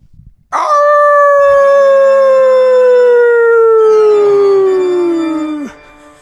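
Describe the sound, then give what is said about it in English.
A person lets out one long, loud imitation of a wolf howl, a sustained tone that starts high and slowly slides downward for about five seconds before cutting off. “I know, I'm trying to figure out what a Wolf Man sounds like.”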